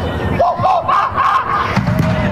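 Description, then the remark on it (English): A crowd in the stands at a high school sporting event in Pearl River High School's gymnasium in Pearl River, New York, shouts racist taunts in a loud, sustained roar, voices rising in rhythmic, chant-like bursts that echo around the gymnasium. “However, it does not matter the location, as displayed inside Pearl River High School's gymnasium in Pearl River, New York.”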